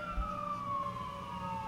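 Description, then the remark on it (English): An emergency vehicle siren wails as it passes, its steady high tone gliding slowly downward in pitch over a low rumble of traffic, with no one speaking. “Is it, like, a 5 alarm?”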